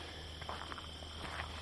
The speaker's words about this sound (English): It's nice hearing these crickets, eh?